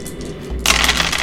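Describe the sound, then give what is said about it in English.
A sudden burst of many dice clattering and tumbling across a hard table, a dense, rattling cascade of small clicks that starts abruptly and stays loud, with no voices. “Hearing so many dice is so satisfying.”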